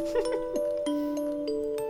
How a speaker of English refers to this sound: This is Baby Mozart with Ode to Joy. What's more comforting than the sound of little bells, vibraphones... and the beautiful melodies of Beethoven.